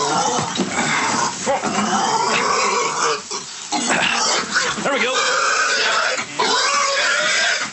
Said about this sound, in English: So he just kind of uses his foot and like nudges the pig out this little floor window.